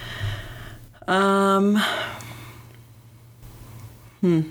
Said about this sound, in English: Speaking of dreams, I can't stop yawning.